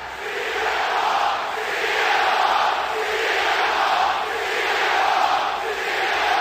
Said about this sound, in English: The crowd chants with a huge cheer and chants of CM Punk's name